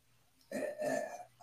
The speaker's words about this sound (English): As my wife burps in the background.